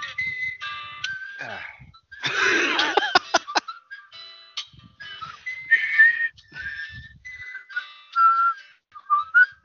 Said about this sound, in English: that is the whistle theme to Deadly Premonition, one of only 2 songs in the game